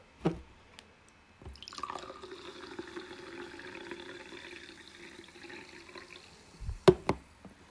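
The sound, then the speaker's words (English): A highball can snaps open with a short hiss, then a steady fizzy stream of liquid pours for several seconds, ending with a couple of sharp clinks. Fairly clear, with no talking. “Anyway, but actually, I'm going to open this can.”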